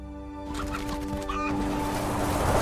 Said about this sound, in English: there's a really rowdy rooster who makes this cameo appearance in the trailer.